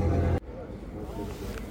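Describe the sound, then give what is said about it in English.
A boat engine in Helsinki Harbour rumbles loud for a brief moment, then cuts off abruptly into a quieter outdoor ambience with faint, murmuring voices. “because I realise the engine is not adding to your enjoyment when you're listening to it.”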